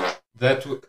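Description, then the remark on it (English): A single loud sneeze: a short breathy intake, a brief pause, then a strong voiced burst that trails off, with nothing else around it. “He's got a bit of a cough or a sneeze.”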